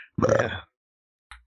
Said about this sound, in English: I'm sorry, I burped.